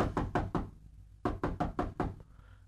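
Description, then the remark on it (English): Police knock firmly on a door: two quick groups of about four sharp raps each, separated by a short pause. No one speaks. “And finally, they came to the real thieves' doors and they were knocking on their door.”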